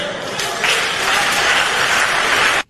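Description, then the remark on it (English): An audience applauding a statement by Barack Obama, a dense, steady wash of many hands clapping at a fairly loud, even level for a couple of seconds before it cuts off abruptly. “But they applauded that easily provable lie from Barack Obama”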